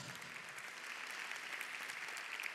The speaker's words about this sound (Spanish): Denle fuerte ese aplauso al Señor, iglesia.